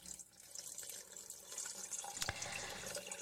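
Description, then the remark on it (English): A steady stream of urine splashes continuously into water, a hissing trickle that runs unbroken for a few seconds, with a brief louder spatter partway through. “I'm gonna cut it. All right. Cut the pee.”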